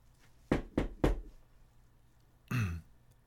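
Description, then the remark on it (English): Three firm, evenly spaced, loud knocks on a door by a white-gloved hand, followed after a short pause by a brief throaty vocal sound, like someone clearing their throat. “And with his white glove, he is the one that knocked on the door.”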